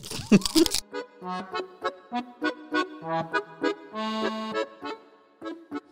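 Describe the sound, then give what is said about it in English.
One sharp crunch of a crisp Red Rock Deli salt and balsamic vinegar kettle potato chip being eaten bursts out at the start, followed by muffled, pitched vocal sounds, like someone humming or mumbling while chewing. “Okay, one crunch.”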